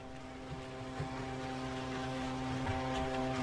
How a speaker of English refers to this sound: Whoa, check out that boat. It's really motoring. Is that Steven Stamkos, captain of the Tampa Bay Lightning? I think it was.